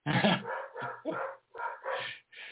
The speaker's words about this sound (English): So she just probably pulled in the driveway, and that's why the other two are barking.